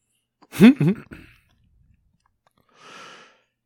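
A loud, voiced yawn with a swooping pitch that breaks into two drawn-out groans, followed after a pause by a soft, breathy exhale.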